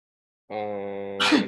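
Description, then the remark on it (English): A single sneeze: a drawn-out, voiced 'ahh' intake building into a sharp, noisy burst at the end. No one speaks. “bless you.”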